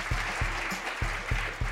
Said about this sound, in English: 122 women. You can applaud that. 122 women.